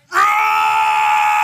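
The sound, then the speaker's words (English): A man belts out a loud, sustained scream in a deep voice, voicing it deliberately as a mock yell imitating a manly scream. It starts abruptly and holds steady at full volume for over a second, with no talking. “When I go off of this, at least I'm going to scream like a dude.”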